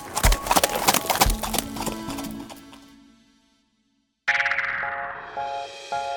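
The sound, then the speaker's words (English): Horse hooves trot in a steady clip-clop rhythm, loud at first, then fade into silence before a bright chiming melody begins. “And trot, canter, and gallop are all types of gaits. A gait is how a horse moves and how fast.”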